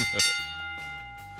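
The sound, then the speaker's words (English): A bell lap bell rings out for bell lap time on the In the Locker Room radio show on ESPN Pittsburgh: a bright metallic strike followed by a steady, sustained ringing tone with shimmering overtones, over a low rumbling hum and no voices. “I love hearing that because that just reminds me of a dinner bell, even though I know it's a bell lap bell.”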